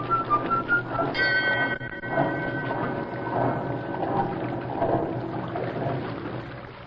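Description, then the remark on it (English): A boat whistle on a river gives a short, bright, reedy blast over steady splashing water. It is preceded by a few faint, quick whistle toots, and the churning water continues after it stops. “Blow your flute at me, will ya?”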